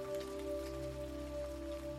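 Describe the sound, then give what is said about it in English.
Steady, soft spring rain from a passing storm pattering continuously on the leaves of a broad tree on the island of Kauai, Hawaii, a dense even hiss with scattered drops, layered over a sustained low humming drone throughout. “The aromatic blooms mingled with the sweet spring rain coming down on her.”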